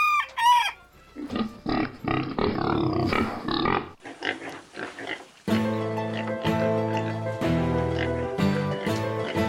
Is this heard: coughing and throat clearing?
no